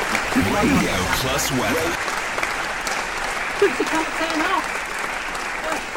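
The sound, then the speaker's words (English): A recorded applause sound effect played on a Radio Plus show: a crowd clapping steadily and densely for several seconds, with faint voices or cheers rising briefly through the clapping. “Getting over ambitious there, the applause.”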